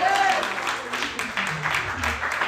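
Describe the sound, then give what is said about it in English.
A church audience claps hands together in a dense, steady burst of applause that fills the whole clip at an even loudness, with a few raised voices mixed into the clatter. “Can we clap our hands and say yes?”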